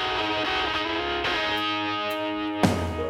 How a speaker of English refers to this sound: We're going to listen to the song … off … by ….